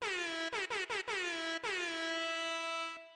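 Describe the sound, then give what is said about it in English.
A loud, blaring air horn blasts in a quick stuttering series of short bursts, then holds one long sustained note that fades out at the end. “Boom. DJ Foghorn.”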